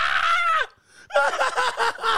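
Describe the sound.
A voice imitates a woman screaming: one long, high-pitched wail, a brief pause, then a quick string of choppy, sobbing shrieks, loud.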